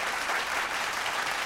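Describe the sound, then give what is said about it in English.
Steady applause from a group celebrating the launch of their first online class, many hands clapping in a dense, continuous patter at a fairly loud level throughout, with no voices standing out. “Let's clap that up.”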